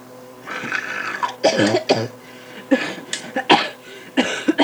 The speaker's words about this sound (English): You have a cough?